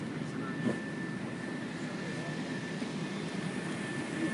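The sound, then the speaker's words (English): A steady, unbroken roar of Boeing 737 jet engines heard from inside the cabin on a flight to Auckland, New Zealand, on 20 July, a dense low rumble with a thin high whine running through it, constant throughout. “As I recited over the Boeing 737 Lunar Lander's jet engines...”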